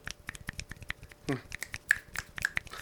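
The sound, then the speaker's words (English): Many fingers snapping at once in a scattered, overlapping patter, imitating how people applaud at a Criterion Collection film viewing by snapping instead of clapping, with a brief murmur of voices partway through. “Here's how everyone applauds during a Criterion collection viewing.”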